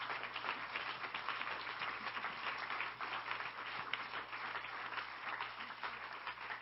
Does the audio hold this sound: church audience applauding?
yes